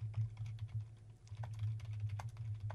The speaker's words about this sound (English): I'm still typing there? Well, I got to give it a good prompt.